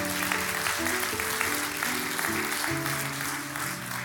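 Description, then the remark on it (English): An audience claps and cheers for the Lord steadily throughout, a dense, continuous wash of applause with shouts mixed in, while sustained keyboard chords play underneath. “Can you give the Lord a shout and a hand clap?”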